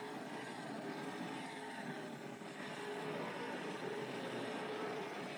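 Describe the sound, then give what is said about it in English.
A steady, dense roar of stock race car engines circling an oval track, loud and continuous throughout, with layered motor drones blending together and no speech, as the Briggs car gets by a lapped car during race one, a 200-lap event. “That is the Briggs machine getting by a machine, one of the lap cars.”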